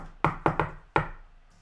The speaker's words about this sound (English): Do you want to knock? I knock on it.